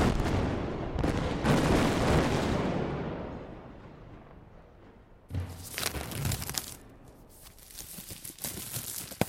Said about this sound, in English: Well, I could put some explosions in the background or something.